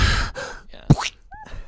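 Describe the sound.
A voice imitates heavy breathing: a few breathy, gasping huffs in quick succession, with one sharper, louder gasp in the middle, and no words spoken.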